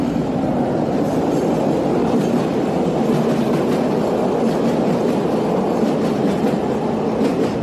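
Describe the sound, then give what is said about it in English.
A train rumbles past, a loud, steady roar of wheels and rail noise with faint rhythmic clacking, continuous for the whole stretch with no voices. “This train going by.”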